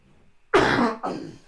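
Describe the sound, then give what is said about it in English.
Two harsh, loud coughs in quick succession, the first longer and raspier than the second, with no talking around them. “Every time I do a podcast, I want to cough my lungs up.”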